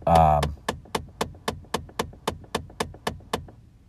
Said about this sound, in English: Editor's footnote, I'm recording this in my car. You just heard my car making a weird noise because it's having some weird heater issues.